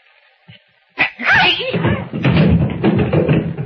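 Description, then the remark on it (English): A loud scuffle on a dark staircase: a soft thump, then a sharp impact as a man is kicked in the shins, followed by a few seconds of shuffling, thudding struggle and strained grunts. “I kicked him in the shins.”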